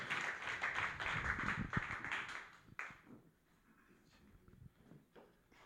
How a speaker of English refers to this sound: So everybody put your hands together for him. Give him a big round of applause.